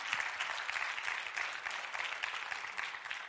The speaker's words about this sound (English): Come on, somebody. Give the Lord a great clap offering.